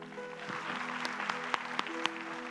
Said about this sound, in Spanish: Amén. Vamos a aplaudir al Señor.